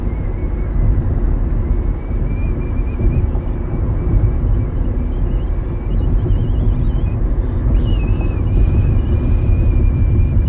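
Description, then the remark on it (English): Someone whistles a thin, sustained tone over heavy, constant car road rumble, the pitch wavering in a shaky vibrato as the vehicle jolts over bumps. “you hear that vibrato in my whistle?”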